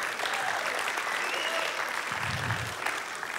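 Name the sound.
applause sound effect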